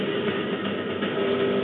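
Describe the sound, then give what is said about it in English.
Trophy truck engines roar as the trucks race out into the open desert after the green flag drops: a steady, dense drone with a gritty mid-range rumble and a faint tonal whine. The sound holds a constant loud level throughout, with no voices. “The green flag drops, Abdali Lopez sets the pace as he leads the trophy trucks out into the open desert.”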